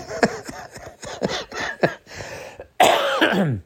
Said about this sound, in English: As I cough my brains out.